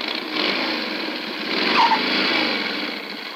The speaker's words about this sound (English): Ah, how do you like the way my cycle stops now that I've had the brakes fixed